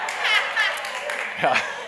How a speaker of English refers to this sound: Don't cheer for me, please. No, hold your applause. No, seriously, hold it.